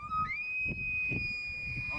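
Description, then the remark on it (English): An elk bugling call: one clear whistle that slides upward in pitch and then holds a long, steady, high note, with low rumbling noise underneath throughout. “when I was crying, would always play an elk bugle, and I would stop crying”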